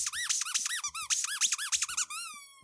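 A rubber duck squeaks over and over in a quick, uneven burst of high, wavering honks, finishing with one longer squeal that trails off. No voices are heard.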